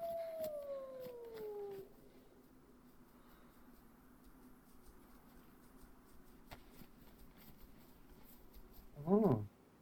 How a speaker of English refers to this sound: That's a wild dog, so you can pretty much tame, is it? Yeah, it's got a new tame mechanic.